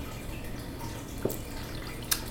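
Two brief, soft wet sounds of people taking sips of water on a count of three rise out of a steady low background hiss, spaced about a second apart with no talking.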